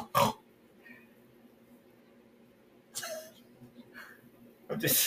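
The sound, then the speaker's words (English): A person snorts like a pig in short, harsh nasal bursts, three of them spread out with a brief vocal sound between, loud against a quiet background. “I'm just snorting.”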